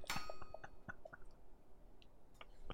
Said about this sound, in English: Yes, these bones are very crunchy. I was not expecting that.